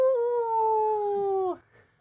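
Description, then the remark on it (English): A person imitates a wolf howl with one long, steady note that sags slightly in pitch before breaking off abruptly after about a second and a half. “It was a deliberate arson attack from Alexander Stewart, also known as the Wolf of Badenoch”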